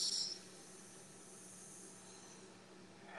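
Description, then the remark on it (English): A long, steady 'sss' hiss, like a snake, from a person breathing out through the teeth during a breathing exercise. It starts a bit louder, then holds quietly and evenly for about three seconds, with no talking. “S's sounds a little bit like a snake, and when you can't take it anymore, let the air flow back in.”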